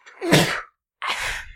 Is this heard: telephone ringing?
no